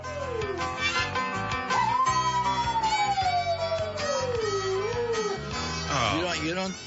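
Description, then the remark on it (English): A dog named Beanie lets out a long, wavering howl that slides slowly downward, singing along over a steady, loud playing of Pachelbel's Canon, with a few shorter yips near the end. “Well, dog singing the Pachelbel Canyon for the Easter holiday.”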